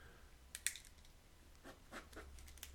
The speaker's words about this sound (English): If y'all hear my clicking, I'm clicking that pen, boy, crossing some things off the list I really wanted to get to this morning.